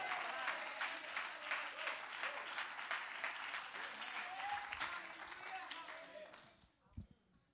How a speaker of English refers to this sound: Oh, would you clap your hands unto the Lord?